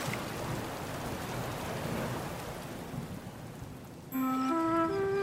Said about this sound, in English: I'd almost forgotten about the storm, Worm. It's nearly here. The waves are getting bigger.